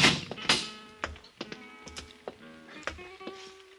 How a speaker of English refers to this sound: His eyes flickered slightly as Peral and I opened the steel grill door.